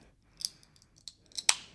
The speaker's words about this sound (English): It's a can of vanilla Coke, guys, so we're going to crack it open and get ready for the pod. Ooh.